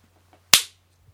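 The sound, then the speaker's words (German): A coin is tossed and lands tails up with one sharp, bright clack that rings out briefly and fades, with only a faint low hum around it and no voices. “Ich werfe die Münze.”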